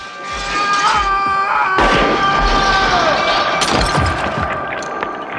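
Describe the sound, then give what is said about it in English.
A mirror shatters loudly as it is shot in a TV scene, among sharp gunshot-like bangs, with bright crashing fragments and a sustained ringing tone running through a dense, chaotic burst of impacts. “I really liked the shots where he's shooting Al, and you see Sam doing it in the reflection as it shatters.”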